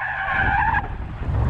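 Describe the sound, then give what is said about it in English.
A loud, high-pitched car tire skid screeches for under a second over a heavy engine rumble, then cuts off as the low roar of the car continues. “Like, so it was either stop and skid like he did, or just, you know, gas is your friend.”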